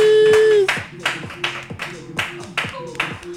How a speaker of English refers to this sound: Yo, round of applause.